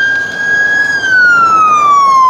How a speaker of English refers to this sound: Y'all hear those sirens, right? Okay. Y'all hear that? That is an omen.